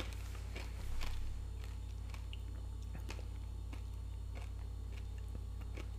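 Quiet chewing of a peanut butter cup with a whole Ruffles potato chip inside. Scattered soft crunches and moist squishy bites make irregular clicks spread across several seconds over a low steady hum, with no talking.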